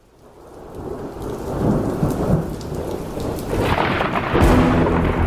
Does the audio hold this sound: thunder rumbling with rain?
yes